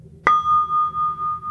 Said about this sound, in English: And with the first sound of the bell, I want you to become one with the bell and the sound.